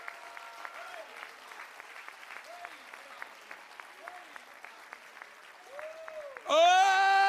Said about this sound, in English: Clap your hands hard in the name of Jesus Christ.